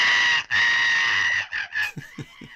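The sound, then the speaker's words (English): Mitch, a cartoon monkey character, screeches loudly and shrilly in one long sustained cry, then breaks into a few shorter, choppy squeals and yelps, alone with no talking. “Oh, and I love Mitch when he's just in full screaming mode.”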